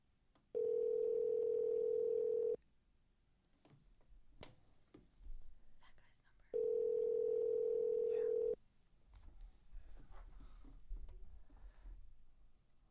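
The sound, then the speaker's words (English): Two long, steady telephone ringback tones, each about two seconds, separated by a several-second pause filled with faint clicks and low rustling, as an outgoing call rings on the line. “We'll see if he even answers. And we'll see if Mayhem's gonna call. Answer the phone.”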